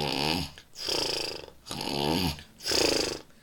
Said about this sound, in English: … was snoring